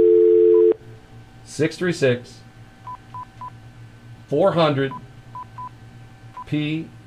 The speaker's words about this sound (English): If you're a good red-blooded American and you get that dial tone up and you dial...